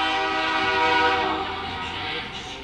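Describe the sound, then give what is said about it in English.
A loud train horn blares steadily for a few seconds, its sustained harmonic tones filling the air as a train rolls past an old ballpark during a baseball game between Dakota Wesleyan and Hastings, then easing slightly as it fades. “Yeah, it won't feel like spring and summer without the train whistle coming by in the old ballpark here.”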